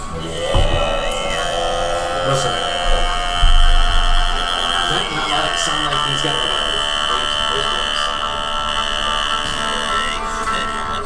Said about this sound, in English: Well, that's Mongolian throat singing.